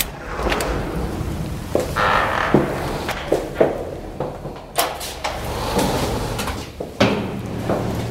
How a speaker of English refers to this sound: The retired detective opens the door to the fire escape